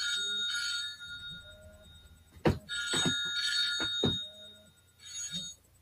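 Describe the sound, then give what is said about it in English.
A phone rings with bright, repeating electronic bell-like tones in bursts, punctuated by a few sharp clicks or taps, moderately loud with no talking. “I don't know who that was, but I'll call them back. I say the only reason I keep my phone on is if there's, you know, an issue at my mother's house.”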